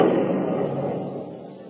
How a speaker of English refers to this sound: When I was very young, I was just struck by lightning.